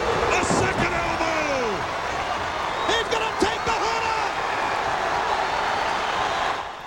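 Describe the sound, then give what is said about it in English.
A wrestling crowd cheers wildly in a loud, unbroken roar after Dusty's bionic elbow downs the Assassin, with individual yells swooping up and down and a few sharp thumps and claps cutting through midway. “Crowd are going absolutely bananas here.”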